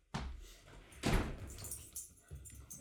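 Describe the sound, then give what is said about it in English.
A door is opened to let a Labrador Retriever in from outside: a burst of rattling and a soft thud around the middle, followed by low shuffling and handling noises as it swings, with faint movement sounds trailing off. “My Labrador Retriever, who went out 10 minutes ago, has now decided he wants to come in, and he's going to sit outside the door and bark until I let him.”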